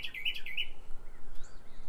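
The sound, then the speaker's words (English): A bird chirps loudly in a quick run of high, bright notes during the first second, then fainter calls trail off against a steady outdoor background hiss. “man, that bird is loud”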